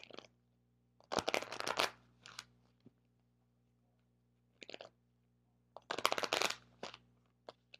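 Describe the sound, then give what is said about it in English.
A deck of cards is shuffled twice in quick, crisp riffling bursts, fairly loud, with small taps and clicks between them over a faint low hum. No one speaks. “I'm going to shuffle one more time, then I'm going to cut them.”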